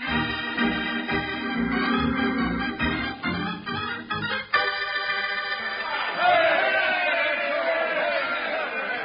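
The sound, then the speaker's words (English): A large crowd in the western town of Jackpot clamors outside, awaiting a new mayor's speech, many voices shouting and cheering at once in a steady roar that swells louder toward the end. “With that crowd out there, I figure I'll need them a lot worse than a highfalutin' speech.”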